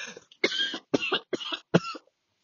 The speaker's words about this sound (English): excuse me, I got a cough.